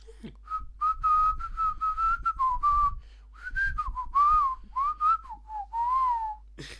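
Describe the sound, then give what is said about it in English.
A person whistles a lively, warbling melody of short sliding phrases with brief pauses, fairly loud, imitating the squeaky call of the Clangers from a children's animated show; no talking. “sometimes you hear... It's the moon calling back. It's like a call and response.”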